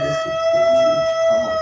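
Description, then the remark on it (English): A dog howls in protest at fireworks in one long, steady, high wail that holds its pitch for the whole moment, loud, with a low rumbling murmur underneath. “He is protesting these fireworks. He wants nothing to do with them, wants no part of them.”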